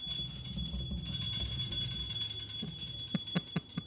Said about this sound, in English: My dog's ringing the bell indicating she needs to go outside.